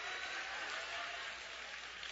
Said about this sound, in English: So give the Lord a hand clap so now you don't need a reason to go to the club.